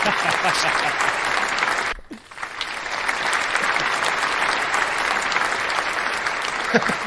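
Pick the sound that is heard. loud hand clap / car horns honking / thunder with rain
loud hand clap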